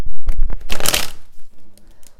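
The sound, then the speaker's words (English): A quick riffle of tarot cards being shuffled, a dense flurry of papery snaps peaking in the middle and then tapering into a few soft taps and slides. “The Four of Pentacles is showing up just sort of through the shuffle.”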